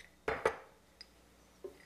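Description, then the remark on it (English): Raw cashews, about half a cup, are scooped into a measuring cup: two quick rattling clatters, then a couple of faint light clicks. No one speaks. “I've got raw cashews here, and I'm gonna take about a half a cup or so.”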